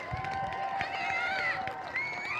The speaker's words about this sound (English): Wow. That was legitimately the best applause anyone has ever gotten here. Like, even Jesus. Like, Jesus is a little jealous right now.